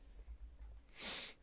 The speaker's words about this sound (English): I'm about to sneeze.